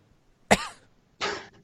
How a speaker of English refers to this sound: There was a long moment of silence and then a small cough. That was a really good cough. Yeah, I'm just saying that cough.